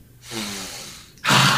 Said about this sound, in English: Just take a whiff.